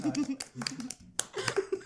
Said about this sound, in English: What a sad clap. That was horrible.